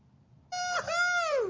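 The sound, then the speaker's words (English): A train horn in a 2012 recording blares suddenly after a moment of quiet, a loud, steady, brassy chord that wavers briefly, then holds and sags slightly in pitch at the end. No bell is evident. “this guy who's excited about, of all things, a train”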